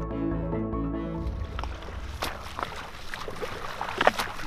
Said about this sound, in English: The sound of a man swimming in the sea. But this is no normal beach holiday. This is Lewis Pugh, and he's swimming in freezing water near the Greenland town of Ilulissat.